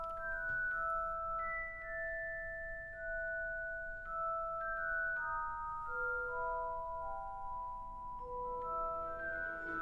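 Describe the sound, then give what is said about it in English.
A single chiming, bell-like instrument plays a slow, winding, repetitive melody at the very start of a film's main theme, each note ringing out clearly and overlapping the next, over a soft low background hum with no voices. “So at the very start of that main score, you just hear like a singular bell sound, you know, repetitively for a little bit, you know, and then it starts to build from there.”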